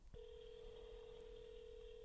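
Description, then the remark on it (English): A steady electronic phone tone starts almost immediately and holds unbroken for about two seconds, the ringback of an outgoing call waiting to be picked up. It is clear, with no voices. “Come on, Will, answer the phone.”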